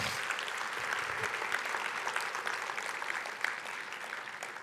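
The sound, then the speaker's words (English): A church audience applauds steadily for several seconds, a dense wash of many hands clapping at an even level with no voices rising above it. “You guys give them a hand.”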